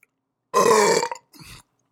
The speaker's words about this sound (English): God, dude, I got a big fucking high life clog in here, dude. This is a low life. This is not a good burping.